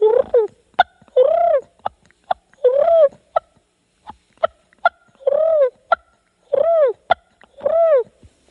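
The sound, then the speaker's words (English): A person imitates a turkey's feeding purr: soft, rolling, trilled notes in short bursts, broken up by sharp clicky clucks, moderately loud with no talking. “I'll do the feed and purr.”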